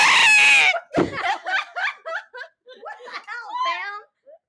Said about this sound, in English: You just scream it like you do. Ooh, I could scream into it.